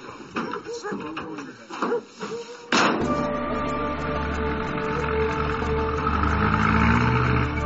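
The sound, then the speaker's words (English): A truck engine roars into life after a few seconds of indistinct voices, then runs loud and steady, a deep rumbling drone with a rising, straining tone as it drives. “Today, it's no longer the horses that carry all the baggage into the valley. Trucks do that now.”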